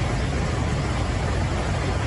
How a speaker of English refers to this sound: That's the sound of floodwaters rushing down a slope in a neighborhood in Highland Falls, New York.